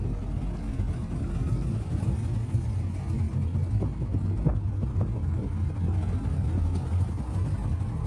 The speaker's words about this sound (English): Oh, beautiful cars. So beautiful. Not this one.